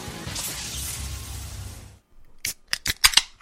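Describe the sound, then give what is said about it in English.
Two drink cans opened in unison by two people as a toast: a broad fizzing hiss lasts about two seconds, then after a brief pause come five or six sharp, crisp metallic clicks and snaps. No voices. “I think it's our first time doing a can opening in unison.”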